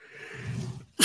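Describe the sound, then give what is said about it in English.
A single sneeze: a breathy, rising intake of air for most of a second, a brief pause, then a sudden loud, explosive burst of sharp hissing noise. “Bless you.”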